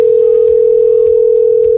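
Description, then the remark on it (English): A telephone rings on an outgoing call to a drummer's phone: one loud, steady electronic tone that holds unbroken for the whole moment, with no voices. “Let's see if Randy answers his phone randomly, or we just get his voicemail.”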